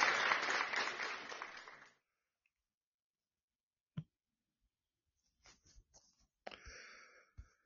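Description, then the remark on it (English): A short burst of group applause for the participants of the first Fallout and BB Friday event, dense and steady for about two seconds, cuts off abruptly into silence, followed by a single sharp click and then scattered clicks and light rustling. “Big clap to everyone here for participating in our very first Fallout and BB Friday.”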